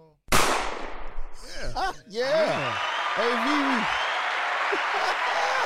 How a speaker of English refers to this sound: Hand claps.